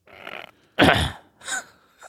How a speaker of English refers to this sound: What was that? I was clearing my throat